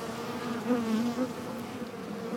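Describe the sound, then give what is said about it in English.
A dense, steady drone of many honeybees buzzing around a hive, a continuous low hum with slight wavering pitch, fairly loud throughout with no voices. “Like two bees will be flying together holding another bee, and they'll like carry it out and take it outside the hive to, you know, keep the hive clean.”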